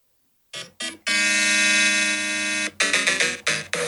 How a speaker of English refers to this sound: It's not this, but they suggested the Super Mario 3 Castle theme.